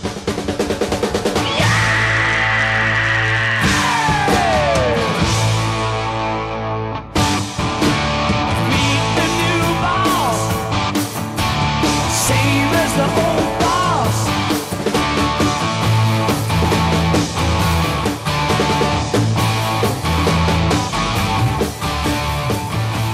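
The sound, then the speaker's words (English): Loud, dense rock music plays throughout, with a singer letting out a long, sustained scream that slides downward early on, backed by pounding drums and driving guitars. “you know, that scream, that is rock and roll in its purest form.”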